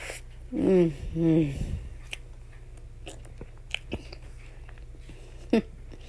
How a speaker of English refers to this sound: You guys probably don't want to hear someone chewing, so I apologize.